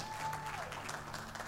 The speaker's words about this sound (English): Why don't we all just jump to our feet right now? Come on, let's give our friends a hand clap.